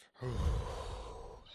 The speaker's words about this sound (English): This is how it always starts. Breathing exercises.